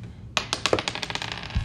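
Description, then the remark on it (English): A small white die clatters across a hard tabletop, a quick run of sharp clicks that tumble and gradually settle over about a second, with no voices. “No, I'm going to use the white die.”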